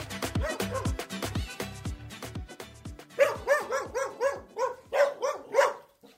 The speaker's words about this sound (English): Oh, dogs.